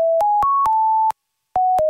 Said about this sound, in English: We're going to play you a monophonic ringtone of a song.